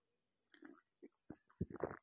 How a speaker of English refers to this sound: Got a cup of tea today in a mug that someone gave me for a Secret Santa. It's got my face on one side and on the back it says, "Don't touch me, I'm famous." So if you hear slurping, that's me drinking my tea.